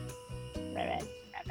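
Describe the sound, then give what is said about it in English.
Several frogs in New Orleans croak in close succession, a dense chorus of throaty, buzzing calls layered over one another, fairly loud, with no voices present. “It's also the land of frogs, apparently.”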